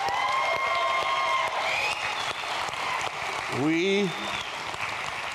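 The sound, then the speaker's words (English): Adults in a church audience cheer and applaud their teenagers back from camp, dense clapping filling the mix while voices shout and whoop, with one rising and falling yell standing out near the end. “Can we just cheer our teenagers on?”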